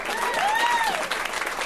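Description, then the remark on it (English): A crowd at a show hosted by Cameron Esposito applauds a 23-year-old audience member with loud, steady clapping, while a single whooping cheer swoops up and back down in pitch over the noise. “Round of applause for this guy.”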